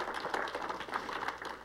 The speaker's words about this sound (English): Give the Lord a hand clap of appreciation, if you will.